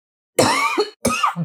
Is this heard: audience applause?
no